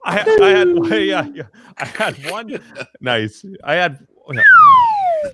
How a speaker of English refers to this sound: We need the slide whistle.